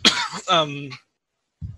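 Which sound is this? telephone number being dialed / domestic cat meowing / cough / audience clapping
cough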